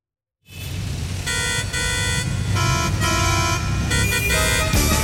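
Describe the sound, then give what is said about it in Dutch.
Car horns honk repeatedly in a traffic jam, several loud, overlapping blasts of steady pitch sounding over a constant low rumble of idling engines, with no one speaking. “Luister maar, hier is allemaal in de file.”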